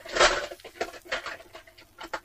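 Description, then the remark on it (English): Someone rummages in a tin for six-sided (D6) dice, producing a quick series of irregular scraping and rattling bursts, loudest at the start, with no voices. “I don't know what he's wrestling with if they're not dice.”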